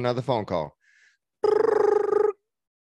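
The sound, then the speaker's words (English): A telephone rings once with an incoming call to the Bodies by Design fitness business, a loud electronic trill lasting about a second with rapid fluttering pulses, right after a short burst of voice. “Here comes another phone call.”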